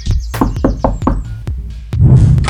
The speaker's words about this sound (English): Do you remember the new secret password to the chicken's place? I can't remember if it's 3 knocks and a clap or 2 claps and a knock. Let's try the first one.